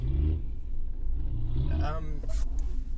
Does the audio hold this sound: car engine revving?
yes